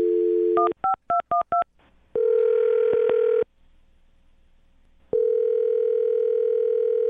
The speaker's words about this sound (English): I'm going to dial the phone number right now, get her on the phone, and find out why she's not talking to you anymore, okay? All right. Thanks. All right, here we go.